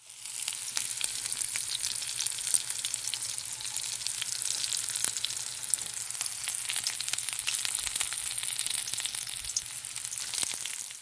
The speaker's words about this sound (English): That was butter sizzling in a pan.